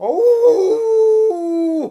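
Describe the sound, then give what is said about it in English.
Dogs howling in a loud, sustained wail that holds steady and then steps to a new pitch, ending with a short whimpering slide. No speech. “Oh, nice doggy. No, don't jump up. Don't bite. No, nice doggy.”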